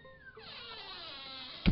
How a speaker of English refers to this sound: No. Come in. And close the door behind you.